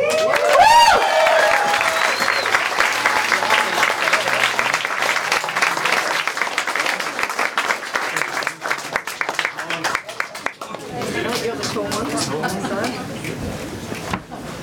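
A large audience in Christchurch bursts into sustained applause for the hosts and producers of Counterspin Media, dense clapping mixed with cheers and a few whistles, loud and continuous for most of the stretch before thinning as crowd chatter takes over.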